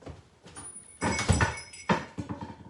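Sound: door being shut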